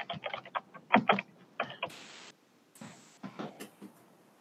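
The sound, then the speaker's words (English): Rapid typing on a computer keyboard, picked up by a microphone, in uneven bursts of clicks and clacks, fairly loud, with a couple of brief hissy sweeps between the keystroke runs. “I can tell it's coming through your microphone because you can hear you typing.”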